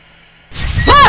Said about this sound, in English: I thought the vent was me breathing. I really might be losing it. Anyway, that vent usually goes off in bursts of three, so we should be good for like another 10, 15 minutes